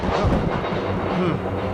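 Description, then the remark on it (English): Thunder from a brewing storm: a deep, steady rumble rolls without a break for the whole moment, loud and low, with no voices over it. “Sounds like a storm is brewing.”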